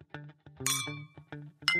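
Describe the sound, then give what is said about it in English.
Shot glasses clink together twice in a toast, each bright clink ringing on briefly, with softer knocks and rattles around them. “Cheers!”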